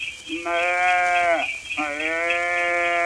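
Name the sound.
calf bleating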